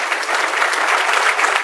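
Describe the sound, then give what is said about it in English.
Steady applause from an audience for the people who made Illinois a great state for energy, a dense, even patter of many hands clapping at once, sustained and fairly loud throughout with no voices over it. “Let's give Lisa Hernandez, Kelly Cassidy, and Robin Gable and all those folks that made Illinois a great state for energy a round of applause.”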